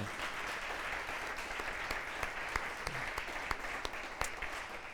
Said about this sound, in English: And so let's give them a round of applause again.